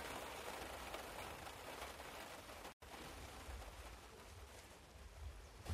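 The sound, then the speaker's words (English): Steady rain from the remnants of Hurricane Gordon falls in Ireland in a dense, continuous hiss with a low rumble beneath, broken by a momentary silence midway before resuming just as heavily. No one speaks. “And then we drive home in the rain, under a black, black cloud.”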